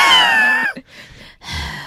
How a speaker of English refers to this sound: Just heavy breathing.